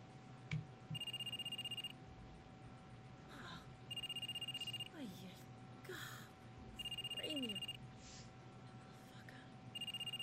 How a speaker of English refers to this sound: And Major's waking up to the cell phone ringing.